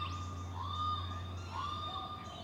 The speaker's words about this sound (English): The daytime bird songs were barely audible over the ambient city noise. To me, it seemed incredibly melancholic how the songs of the absent birds called out to a landscape no longer able to answer them.